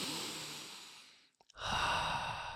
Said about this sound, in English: Okay, you heard me breathing, but I'm not sure you did it with me.